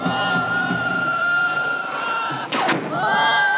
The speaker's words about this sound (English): He says it's mostly a dolphin for the clicks and chirps.